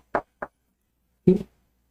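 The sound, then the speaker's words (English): Two quick, sharp knocks on a door, then a brief pause and a heavier, more resonant knock or thud. The raps are distinct, with no talking. “At least knock first. Yes. Well, we did knock.”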